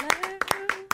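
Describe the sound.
Around six sharp hand claps in an uneven rhythm, each a crisp, bright smack, over a steady voiced tone held underneath.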